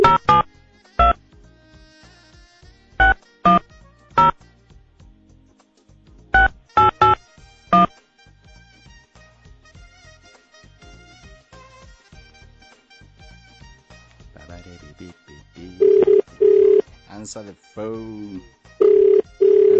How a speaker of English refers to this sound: Answer the phone.